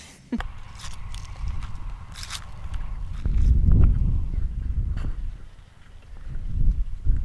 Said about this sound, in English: They look like regular horses. Exactly. Just a little scruffy. Yeah. They're pretty big though.